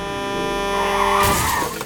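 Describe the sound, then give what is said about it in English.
A vehicle's tires screech in a long, loud skid, then a sudden burst of impact noise marks the vehicle crashing into a pedestrian, with the commotion tailing off briefly afterward. No voices. “On the way to work, you're going to get hit by a truck and die.”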